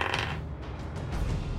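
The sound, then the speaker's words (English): Dice clatter and tumble across a hard tabletop in a quick, continuous run of small clicks and rattles, fairly clear, with no voices. “All right, first roll, it's like a 28, should be fine.”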